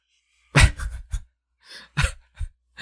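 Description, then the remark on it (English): A dog snoring, a series of short, irregular snorting breaths with brief pauses between them, fairly loud and with no talking. “It's just the dogs.”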